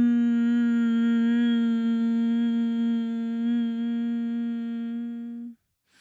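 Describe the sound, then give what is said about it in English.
A single voice chants a long, steady "ham" (hum) healing mantra tone, full, holding one low pitch for about five and a half seconds before cutting off into silence. “And our healing mantra, if we're going to grab that mudra with me, if you can, middle finger to thumb.”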